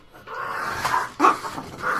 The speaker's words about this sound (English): And a special appearance by my dogs, I apologize. Yeah, they're joining in with the … credit, which is nice.